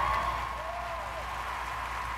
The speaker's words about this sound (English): Well, they just started clapping. I mean, it did almost sound like he was wrapping up.